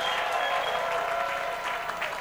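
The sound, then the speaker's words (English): An audience claps and cheers steadily as a clap offering and shout of praise to the Lord, a dense wash of many hands with shouts mixed in, loud and sustained throughout with no speech over it. “And give the Lord a clap offering and a shout of praise here.”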